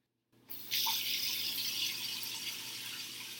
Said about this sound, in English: One time, the faucet turned on by itself.